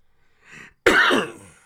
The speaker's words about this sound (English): Your never-ending cough concerns me. It comes and goes.